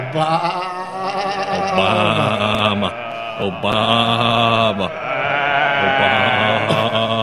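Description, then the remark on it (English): Loud sheep bleating: several wavering, quavering calls overlap into a nearly continuous eerie chorus, with only brief breaks between long drawn-out cries. “Is that the creepiest ass zombie sheep you've ever heard in your life?”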